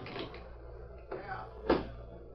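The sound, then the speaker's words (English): A knife pries at the lock of a locked desk drawer: scraping and rattling of wood and metal, then a sharp, louder snap as the lock gives, with no talking. “Now, the drawer is locked. Give me your knife, will you? Here, knife. Thanks, Tonto. I'll have to pry the lock.”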